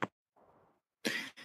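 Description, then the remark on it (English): Someone blows their nose: a quick snort, a soft breathy rustle, then two loud, forceful honking blasts of air in quick succession. “I got to blow my nose real quick.”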